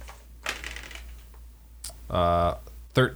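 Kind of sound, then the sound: household object, dice rolling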